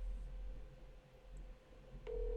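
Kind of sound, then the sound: signal or alarm, telephone ringing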